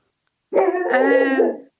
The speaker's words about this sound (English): Oh, we've got the dog right on cue. Don't think he's happy about it.